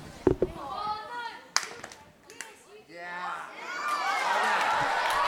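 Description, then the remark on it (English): Several sharp hand claps land at uneven intervals amid excited children's voices, with overlapping chatter and shouting growing louder toward the end, as a group plays a clapping game. “So the way it goes is you clap, and then you go boom, boom, boom, boom, clap.”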